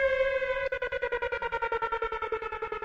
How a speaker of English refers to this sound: I need that horn. Okay. I need that for traffic, baby. Everybody got to move.